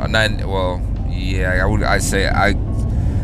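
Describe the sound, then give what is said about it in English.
A steady, low road-and-engine rumble fills the cabin of a moving car, with a person talking over the constant hum. “I think I'm doing a car cast.”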